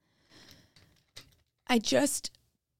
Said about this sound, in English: hold on, I gotta take a sip of water, guys. You can take a sip. This is like a water break, okay? We're gonna take a water break.